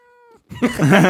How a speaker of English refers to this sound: Should we see if we should get her to meow in the mic? Yes, please. Speak. Meow. She's not a dog, so she's not going to... Go on, speak.